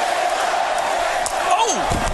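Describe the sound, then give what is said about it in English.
A loud, sustained roar of a sold-out arena crowd of 15,708 in Brooklyn cheering at a wrestling match between Christian and Dolph Ziggler, dense and steady throughout, with a rising shout or whoop standing out near the end. “Sold out tonight in Brooklyn, 15,708. A very vocal crowd.”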